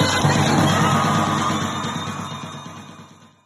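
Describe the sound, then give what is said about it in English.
A crowd at the Defund the War Machine rally on December 9, 2023, near the Pentagon in Arlington, Virginia, cheers and shouts in a dense, roaring wash of voices with whoops rising above it, the noise holding steady before gradually fading out over a few seconds. “You just heard participants in the Defund the War Machine rally held December 9th, 2023, near the Pentagon in Arlington, Virginia”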